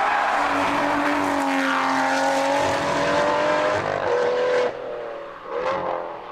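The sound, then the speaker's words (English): An Aston Martin Vantage GT12 engine roars loudly and continuously, its pitch sweeping up and down through gear changes, with a sharp drop and rise near the end as it passes by. “Aston Martin, the Vantage GT12.”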